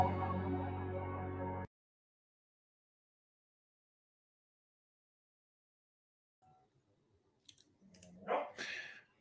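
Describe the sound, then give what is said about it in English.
A brief burst of music cuts off into silence, then a dog gives a couple of short, sharp barks near the end, moderately loud, with faint rustling around them. “Hang on, I gotta shut my dog up.”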